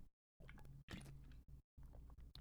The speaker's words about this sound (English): Hold on, I'm gonna take a sip real quick.